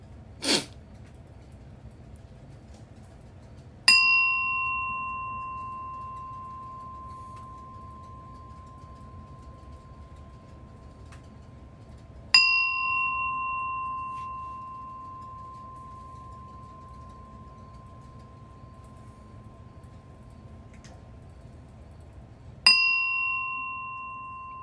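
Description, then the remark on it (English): A meditation bell is struck three times, several seconds apart, each clear tone ringing out and slowly fading into quiet. A brief click comes just before, and no one speaks. “So I'm going to ring the bell, and then I'm going to give instruction.”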